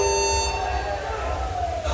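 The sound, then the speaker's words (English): A fire alarm, set off by too much smoke, blares with a continuous, harsh buzzing tone that holds steady and dips slightly in pitch near the end, over a low background rumble. “It looks like we just turned on the fire alarms.”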